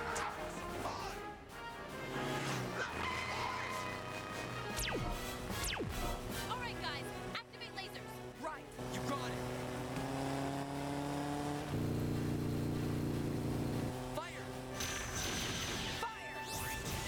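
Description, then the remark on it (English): A car engine runs loud, revving up and down with a steady throaty drone, punctuated by sharp crashing impacts and rushing whooshes, with motorcycles and voices faintly mixed underneath. “How did she hear him from that far away over motorcycles? And an engine running on a car.”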